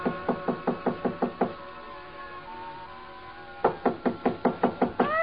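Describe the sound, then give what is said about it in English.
Two rapid bursts of firm knocking on the wooden door of Berman's hotel suite on the ninth floor, each about seven quick raps, separated by a pause of quiet room tone. Fairly loud, with no voices. “Break in? It would have taken a battering ram. So I tried knocking.”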